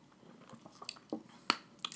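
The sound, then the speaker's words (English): Someone takes a swig of a drink: quiet, wet sipping and swallowing noises, broken by a couple of sharp, bright clicks like a glass being tipped. No one speaks. “Yeah, I'm just going to take a swig of this.”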